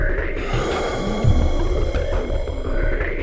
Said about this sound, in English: I looked into Joe's eyes. They appeared lifeless. A crystalline gaze peered through me and into the afterlife. A haunting gasp escaped Joe's mouth.